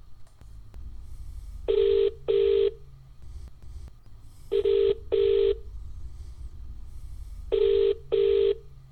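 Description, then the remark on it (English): A phone line ringing out on a call back to someone whose phone cut off: three double-burst ringback tones, evenly spaced, steady and fairly loud over a low background hum, with no one answering or speaking. “Phone's cut off. I just hope he rings me back. I'll try him.”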